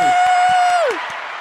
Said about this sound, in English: Woo! What a round of applause. Thank you very much. Yeah, the studio happy audience, New Year. The audience here loves you.